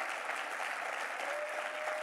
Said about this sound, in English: Thank you so much, church. Will you clap your hands for these that are giving their life to Jesus right now?